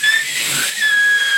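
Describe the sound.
A voice imitates the escape valve of a pressure cooker whistling under pressure: a sustained, breathy hiss carrying a thin high-pitched whistle tone, loud, lasting just over a second with no talking.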